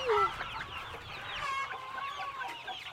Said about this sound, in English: The farm recently got chicks, too. I love the little chick sound.